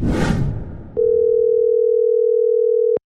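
A telephone dial tone hums steadily and loudly for about two seconds while a call is being placed. It starts with a click after a brief burst of noisy static and cuts off abruptly with another click.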